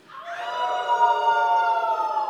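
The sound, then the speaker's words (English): A church audience joins in a sustained, rising howl at a morning service, layered tones swelling together and holding steady like a siren-like group cry. “Do we need to howl this morning? One, two, three.”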